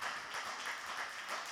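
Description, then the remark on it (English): A church audience claps together in praise in a steady, dense wash of hand claps that holds evenly for the whole moment, fairly soft overall with no voices standing out. “Your clap is elementary.”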